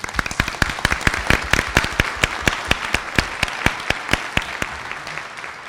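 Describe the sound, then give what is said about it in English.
An audience at a college event about a new building project applauds steadily. Many hands clap together in a dense, sustained patter with sharper individual claps standing out, lasting several seconds with no voices heard. “We're not going to have applause for everyone.”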